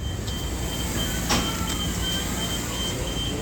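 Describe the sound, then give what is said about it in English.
The wheelchair ramp of a number 49 city bus deploys, coming out completely level, with a steady mechanical whir and a faint high whine, one sharp clunk partway through, all over loud, constant idling-bus and street noise. “So you can see the ramp here, and you see when it comes out, it's completely level.”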